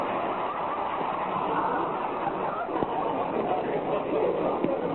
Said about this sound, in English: Another car wants to pass us, Rochester.